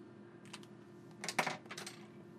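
Quiet scratching of a pen writing a prediction on paper, coming in a few short bursts of strokes with brief pauses between, over a low steady background hum.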